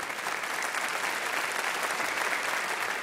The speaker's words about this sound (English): You can applaud it. It's awesome.